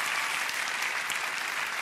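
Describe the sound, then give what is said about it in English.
A crowd claps to the Lord together in steady, dense applause, a continuous wash of overlapping hand claps with no pauses and no voices rising above it. “I want you to clap to the Lord in just a minute.”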